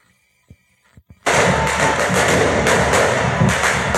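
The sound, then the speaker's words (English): A few faint thuds, then fireworks suddenly erupt into a loud, dense barrage of bangs and crackling that continues without a break, at Firework Night in Hastings, played from a video. No one speaks. “So this is Hastings Fire. Hastings Firework Night.”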